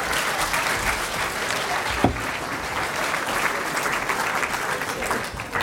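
An audience gives a steady round of applause, dense overlapping clapping that stays loud and even for about six seconds, with one sharper clap standing out partway through.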